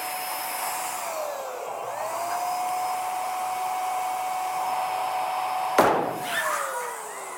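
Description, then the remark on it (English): A steady, whining electric air pump hums as a balloon fills, its pitch sliding slowly, until a single sharp pop bursts it; the pump keeps droning briefly afterward. “That balloon is useless, right? It got so big that it just blew up.”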